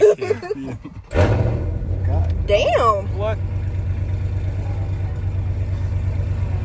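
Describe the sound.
A car engine suddenly roars and keeps up a loud, steady low rumble, while voices talk and exclaim over it at the start.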